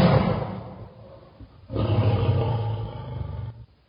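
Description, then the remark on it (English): A tiger roars twice, loud, each roar a deep, rumbling growl lasting over a second, with a brief quieter gap between them and no talking. “The roar of the tiger was deafening.”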